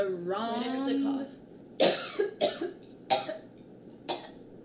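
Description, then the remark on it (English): A voice trails off with a wavering vocal sound, then a series of sharp coughs follows, about four or five bursts spaced irregularly, loud and harsh. “Do you have to cough or die?”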